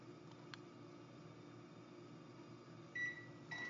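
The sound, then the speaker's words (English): A microwave oven, started by a voice command to Alexa, runs its popcorn program for 3 ounces of popcorn, humming steadily with a low, droning whir, a faint click near the start and brief higher-pitched electronic tones toward the end, with no talking. “Alexa, microwave popcorn.”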